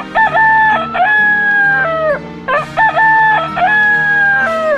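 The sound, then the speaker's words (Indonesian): A rooster crows twice in a row, loud, each long cock-a-doodle-doo rising and then trailing off, with a low steady hum underneath. “Ternyata ayam tersebut adalah ayam ajaib yang sangat kuat dan bisa berbicara.”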